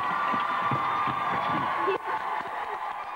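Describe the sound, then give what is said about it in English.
A dense, steady roar of a large pantomime audience cheering and shouting, loud and continuous throughout, with a slight dip near the end and scattered voices mixed into the din. “And the crowd, for some reason, go wild at the end.”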